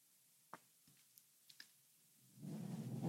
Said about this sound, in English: There's actually a really beautiful thunderstorm going on right now where I am. It's very supportive of transformational work.